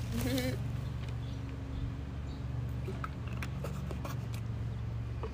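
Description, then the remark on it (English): Someone takes a sip of water, with a few soft, wet swallowing clicks and gulps over a steady low background hum. “Let me get a drink of water real quick before I finish.”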